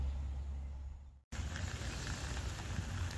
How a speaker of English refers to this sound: Well, the rain's setting quite heavily now.